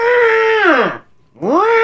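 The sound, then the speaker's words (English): A voice imitates the old-fashioned horn sound that was set on a car: a loud, nasal held tone that bends downward and cuts off, then after a short gap swoops back up in a second honk. “And so I changed her horn sound. Yeah. And so she honks her horn and then it's like.”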